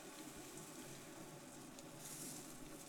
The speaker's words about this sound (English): They hear it. Hissing? That's the proof. The sizzling.